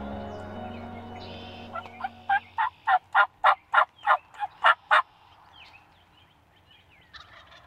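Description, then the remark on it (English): A wild turkey gobbles in a rapid, rattling burst of about ten loud pulses lasting around three seconds, with quieter outdoor background before and after. “Just as fast as that bird came into Frank's life, it decided to go right back out of it.”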